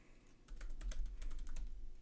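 Rapid typing on a computer keyboard as a web address is entered, a quick run of sharp clicks and taps with a low rumble underneath, starting after a brief pause and continuing steadily to the end.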